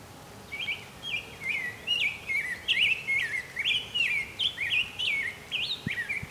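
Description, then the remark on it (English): Two American goldfinches call: a steady run of high, bright twittering notes that slide up and down in pitch, repeating rhythmically for several seconds with no talking. “Goldfinch here as well, American goldfinch, a couple of them.”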